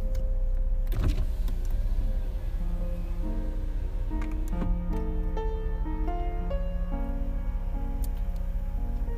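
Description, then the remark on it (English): A car engine rumbles steadily as the vehicle pulls away, with a brief thump near the start and shifting mechanical whines over the low drone, no one speaking. “Just take a pull, and then yeah, I'm going to drive off, because I want to get the smoke out of my car.”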